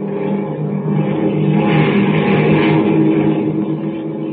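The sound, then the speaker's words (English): A steady, loud airplane engine drones continuously as the plane flies toward California, a low rumbling hum with a slight swell in the middle and no voices over it. “As our story continues today, Kent and Lois Lane, star girl reporter, are following in the next plane.”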